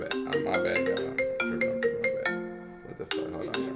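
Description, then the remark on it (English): A phone ringtone plays a bright, looping electronic melody of sustained tones, fairly loud, with faint voices mixed in underneath. “No, you need to put your phone on vibrate.”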